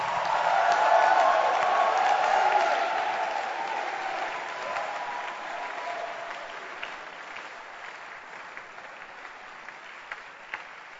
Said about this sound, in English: Be cool. Clap your hands. Let's welcome Bishop Ntefo.